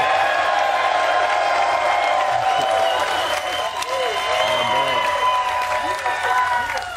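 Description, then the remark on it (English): A crowd applauds Seattle Seahawks safety Quandre Diggs steadily for several seconds, dense clapping mixed with cheers and a few whoops, loud and sustained throughout. “So without further ado, can y'all clap for Quandre Diggs, please?”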